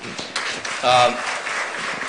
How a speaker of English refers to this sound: You can clap.